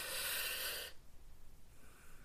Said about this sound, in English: Don't worry about what it sounds like, worry about what it feels like. One more breath, final breath.